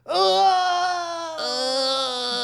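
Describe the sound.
A voice imitates the Wilhelm scream: two loud, strained, drawn-out yells in quick succession, harmonically rich and sliding slightly downward in pitch, with no other talk.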